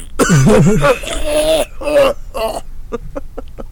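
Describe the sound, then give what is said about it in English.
A harsh, chesty bronchitis cough fit: a few rough, groaning hacks that trail off into a quick series of short, dry coughs. “I got that bronchitis cough on my shit.”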